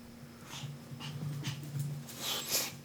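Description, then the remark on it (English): A dog pants steadily, quick rhythmic huffs about twice a second, with a faint low hum in the background and no one talking. “Please ignore my panting dog.”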